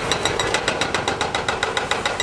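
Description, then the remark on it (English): A jackhammer pounds concrete while demolishing the old defunct dam on Rattlesnake Creek in Missoula, in a rapid, steady stream of sharp metallic blows, loud and harsh, with a low machinery rumble underneath and no voices. “The old defunct dam on the Rattlesnake Creek, Missoula, has finally been demolished.”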